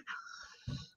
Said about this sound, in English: This is not the laugh. That's me coughing.